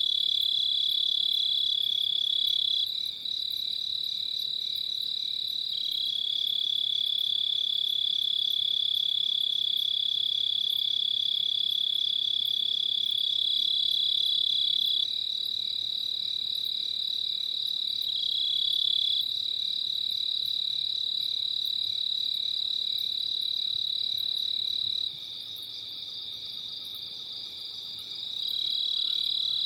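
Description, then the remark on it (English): A steady, high-pitched chorus of Pacific tree frogs trills continuously throughout in the darkness at night, fairly loud and unbroken, with no voices. “I hear some Pacific tree frogs starting to call.”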